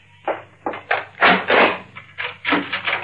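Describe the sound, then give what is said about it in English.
A door bolt is drawn back with a series of rough, scraping rattles, about half a dozen uneven bursts of grinding metal and wood over a few seconds, with no voices. “Bill, why did you bolt the door?”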